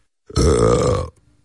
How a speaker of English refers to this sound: Oh, God. Did he say it just like that? That's an actual quote with the belch and everything. Yeah, he had gas that day.